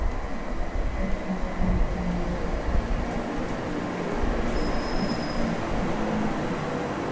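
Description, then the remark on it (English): A train rolls steadily past a railway station platform, a dense continuous rumble of wheels on track, with a high metallic wheel squeal rising briefly toward the end. No voices. “We're actually standing right on the railway station platform.”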